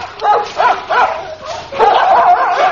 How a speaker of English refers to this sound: Your dogs have got very loud voices, sir. Oh, yes, on a clear day, they carry for miles. What happens when the dogs have tracked down a parachutist? Well, they hold him until the troops arrive.